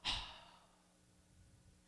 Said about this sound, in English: So they taught me how to breathe. They taught me how to do like this. They taught me how to do a cleansing breath.